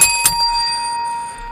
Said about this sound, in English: Beloved, is it too early in the morning to ring my bell? No, it's not.